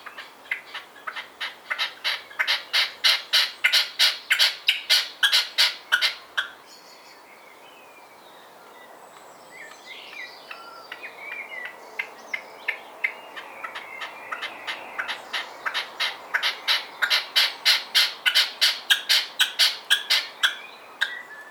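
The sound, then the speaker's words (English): A red-legged partridge in a garden calls in a rapid, rhythmic series of harsh chuffing notes, loud, with a quieter gap midway where faint chirps from other birds fill in before the calling resumes. “I haven't heard this one make many of the louder calls, and when I have heard it, it's generally been a few streets over.”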